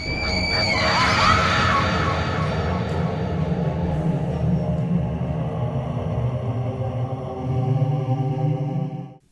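A shrill, piercing scream rises sharply at the start and fades into a long, eerie droning wail that holds steady for several seconds before cutting off abruptly.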